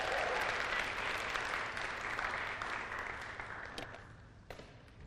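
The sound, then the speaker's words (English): A crowd applauds steadily with dense, continuous clapping that stays loud for several seconds and then slowly thins and fades toward the end. “I'm just going to give him a round of applause for that.”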